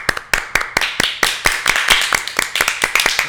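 crowd, clapping

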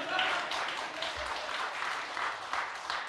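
crowd, audience clapping

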